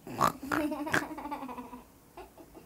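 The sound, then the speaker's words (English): A child's voice imitates her grandmother's snoring with a few sharp, piggish snorts followed by a drawn-out, wavering voiced rumble that fades toward the end. “This is what she does when she snores.”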